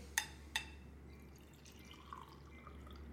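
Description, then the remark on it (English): The speaker's dripping tap: two bright, ringing plinks of water drops in quick succession, followed by a few fainter drips, all over a steady low hum, with a train also audible and no talking. “Oh, it's my tap, and you can hear the train, but hey.”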